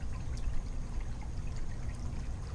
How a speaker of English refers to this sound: I am recording right now in my backyard, and the sprinklers might be going on at any minute, and I'm sitting here with my laptop, and it's night, and I'm sitting by, I don't know, let me see if you can hear the fountain.